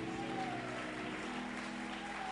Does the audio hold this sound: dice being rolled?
no